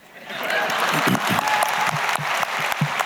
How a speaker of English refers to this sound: You know, you can clap at the beginning of any of us, you can clap in the middle, you can clap at the end, okay? It's up to you, but you will clap.